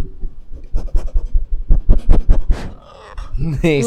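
A dog, Finn, a pit bull boxer mix, chews on a toy, making a rapid, irregular run of crunchy, scratchy gnawing bursts at moderate loudness, ending with a brief higher-pitched vocal sound.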